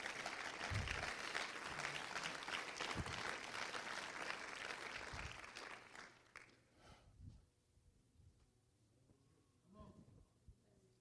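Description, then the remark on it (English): A crowd claps together in a dense, steady burst of applause given as a hand clap of praise, fading after about six seconds and leaving scattered claps and a few murmuring voices. “Will somebody give him a hand clap of praise?”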